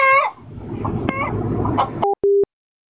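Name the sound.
chicken clucking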